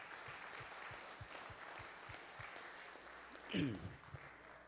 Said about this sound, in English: Come on and give the Lord a hand clap of praise.